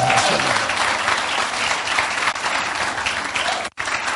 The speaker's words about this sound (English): So, clap for me in that.